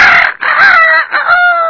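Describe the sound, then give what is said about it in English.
A rooster crows loudly in the morning, a single drawn-out cock-a-doodle-doo broken into strained, wavering segments that trail off at the end. No one speaks. “In the morning, the rooster would crow.”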